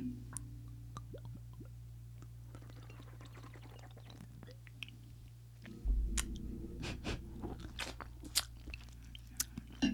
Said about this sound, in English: Sorry to all of you that are listening. That probably sounded super disgusting. I took a sip out of a bird's butt and then had a bite of lime.